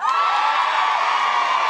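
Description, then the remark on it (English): A crowd cheers loudly and steadily, a dense wash of whoops and shouts holding at full volume for under two seconds, with no single voice standing out; audience members not from Dublin cheer when asked to. “But can I get a big cheer to anyone here not from Dublin?”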